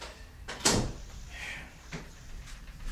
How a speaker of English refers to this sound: You see, I closed my office door.